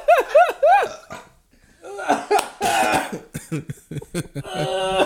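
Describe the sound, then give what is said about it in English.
A man coughs in a rough, sputtering fit, with strained throaty bursts and a hum-like sound at the start, after a swig of a drink went down the wrong pipe. “Mm-mm. coughs> Wrong pipe.”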